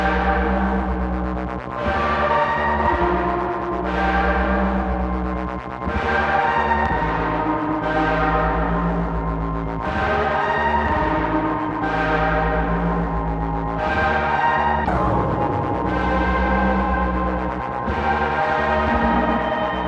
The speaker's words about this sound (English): so I'm really curious about this one now, because there's like this weird pipe organ sound or some kind, it's very airy keyboard sound.